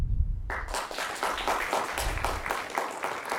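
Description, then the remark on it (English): A crowd at a debate breaks into applause for the candidates, many hands clapping in a dense, steady wash that starts abruptly and stays loud throughout, with a low rumble at the very beginning. “How about a huge round of applause for all of our candidates here tonight?”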